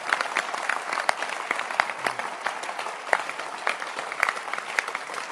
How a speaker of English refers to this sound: Clap your hands for shepherd.